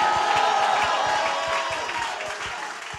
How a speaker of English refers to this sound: Go ahead and clap your hands. Give the Lord a mighty shout. Come on, give Jesus a mighty shout.